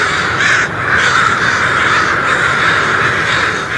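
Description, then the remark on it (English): A dense, continuous racket of thousands of crows cawing at once as they leave their roost in Danville, Illinois, in the morning about an hour before sunrise, loud, a massed flock calling over each other with no pauses and no voices. “Imagine the ruckus when the first few thousand crows leave in the morning, about an hour before sunrise.”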